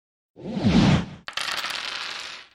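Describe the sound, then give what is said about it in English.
The StarCraft cloaking noise, a swirling electronic whoosh with wavering, sweeping tones, rises and fades, then a sharp click gives way to a steady rattling clatter of a dice rolling sound made with effects in Audacity, with no voices. “I'll spare you all the details, but what I eventually came up with was the dice rolling sound. But I play the StarCraft cloaking noise first.”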